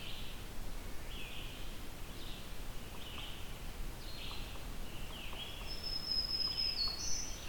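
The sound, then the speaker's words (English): A yellow-billed cuckoo calls, a run of hollow knocking notes over a steady hiss of outdoor background noise, while other birds chirp faintly in the woods. “That's a yellow-billed cuckoo.”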